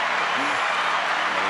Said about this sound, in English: Still round of applause for the homie. Still round of applause for the homie, man.